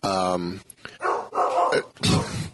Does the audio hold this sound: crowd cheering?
no